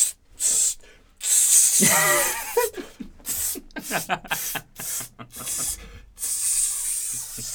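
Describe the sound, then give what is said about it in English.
A person imitates Axe body spray being sprayed with their mouth, a series of sharp, bright hissing bursts separated by brief pauses, with a short vocalized sound in the middle. It is fairly loud. “How much did, like, he have to spray?”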